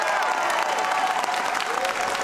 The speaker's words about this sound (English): A crowd of legislators, as well as state national activists who've lobbied for the bill, cheered as Reynolds spoke at the Capitol.